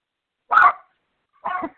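Two sharp dog barks, spaced about a second apart, moderately loud, with silence between and no talking.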